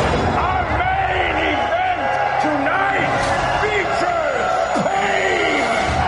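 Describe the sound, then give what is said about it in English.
A large crowd roars at a robot fight in the film Real Steel, a loud, unbroken wall of overlapping shouts and cheers with individual voices rising and falling throughout. “But the crowd, they never change.”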